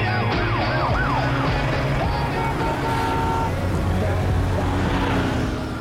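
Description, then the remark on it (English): A car approaches with a loud, steady engine and road rumble that fills the whole stretch, while a wailing, rising-and-falling siren tone swoops through near the start. “There's a car coming!”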